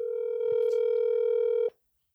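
A steady, buzzy telephone dial tone holds at one pitch for under two seconds, with a few faint clicks over it, as a call is placed from a house during a storm, then cuts off abruptly into silence.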